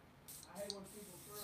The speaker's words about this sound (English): You see all of the particles and things? That stuff stays in the air for quite a while. You spray this stuff here. This wonderful stuff that we all know.